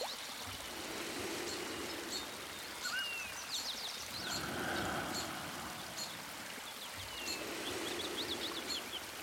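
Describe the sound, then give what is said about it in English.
Birds chirp and trill from several directions in a forest in the morning sun, their bright calls scattered over a steady rushing wash like a stream. No voices, just layered birdsong. “I like to shut my eyes and listen to the birdsong around me.”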